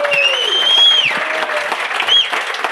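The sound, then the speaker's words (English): A crowd applauds steadily, dense clapping with a few high whistles rising above it, fairly loud throughout. “big round of applause for Glenn Block”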